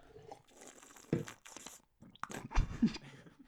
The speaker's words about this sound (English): So, folks, I just put my mouth and a cup up to the microphone to take a drink and make it intentionally loud, and it all just spilled